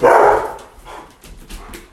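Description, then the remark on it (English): A dog lets out one loud bark at the start, followed by a few softer, shorter yips and rustling noises trailing off over the next second or so. No one speaks. “Yeah, I just want to say real quick for the folks at home, you might hear feet in the background, you might hear dogs, you might hear rustling.”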